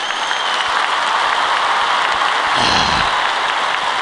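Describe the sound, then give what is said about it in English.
A played applause sound effect: steady, dense applause from a crowd, a continuous crackle of many hands clapping at an even loudness, swelling slightly near the end with some cheering mixed in. “That's a bigger round of applause than Gary.”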